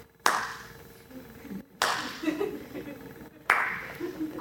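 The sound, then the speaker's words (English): A slow, deliberate villainous clap, the off-camera slow clap of a villain: three sharp, loud hand claps spaced evenly about a second and a half apart, each leaving a brief ringing tail before the next. “And this one is a really fun one to use, which is the villainous off-camera clapping. So we just hear the slow clap of villainry.”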